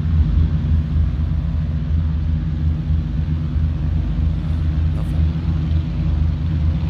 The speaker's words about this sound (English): Okay, right. Very fast, agile aircraft. Yeah. Those are racing aircraft.